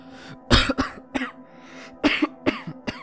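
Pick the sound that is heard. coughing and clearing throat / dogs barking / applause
coughing and clearing throat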